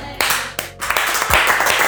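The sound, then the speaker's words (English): An audience bursts into loud, sustained applause after a prayer, celebrating those who just made the decision to put their lives in Jesus' hands, dense clapping swelling after a few sharp initial claps and continuing steadily. “Oh, that was a big applause for that one.”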